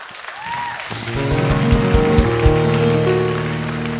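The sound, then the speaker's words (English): An audience claps steadily in a dense, hissing wash of applause, while sustained musical tones swell in underneath after the first second and hold to the end. “Come on, you're clapping like you need deliverance.”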